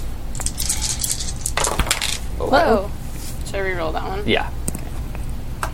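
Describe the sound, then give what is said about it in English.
Six dice clatter and rattle as they're rolled, a cluster of bright clicking impacts with people's voices murmuring underneath. “And I'm rolling six?”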